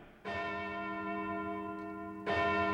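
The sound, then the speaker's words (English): A clock in Tumbleweed City strikes two, marking closing time at the First Rational Bank: two loud, resonant bell tones about two seconds apart, each ringing on with a rich, sustained hum that barely fades before the next chime. No voices. “As the riders jubilantly gallop towards town in Tumbleweed City, the clock strikes two, and that means it's closing time at the First Rational Bank.”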